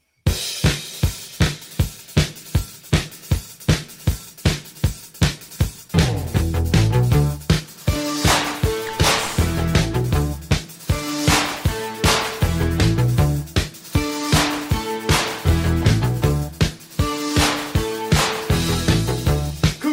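An upbeat 1980 new wave rock song opens with a steady, punchy drum beat, then bright synths, guitar and bass come in at full volume with a driving, bouncy rhythm.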